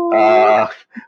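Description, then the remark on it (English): A dog sleeping right behind the speaker in British Columbia lets out a drawn-out, droning groan lasting about half a second, followed a moment later by a short, softer grunt. “Well, I have three dogs who are, I can't imagine life without my dogs. They're great friends. One of them is sleeping right behind me at the moment.”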